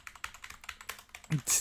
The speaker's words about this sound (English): Wasn't Googling it with that obnoxiously loud keyboard.